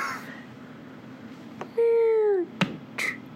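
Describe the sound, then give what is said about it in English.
A door swings shut: a drawn-out, slightly falling hinge creak, then a sharp latch click and a softer knock just after. No one speaks. “The door shuts.”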